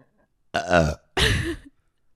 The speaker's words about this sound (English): That was good. That was a good burp. Mm. I needed that.